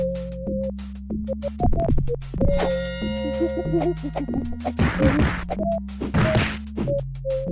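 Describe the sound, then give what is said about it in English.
Punching sound effects from a 1995 beat-em-up video game on the Sega Genesis, also released on the Super Nintendo Entertainment System: several sharp, loud whacks and thuds land in irregular bursts over a bouncy synth soundtrack with a stepping bass line. “No, there was some punching, though.”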